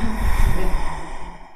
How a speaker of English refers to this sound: And right here. Breathing that in.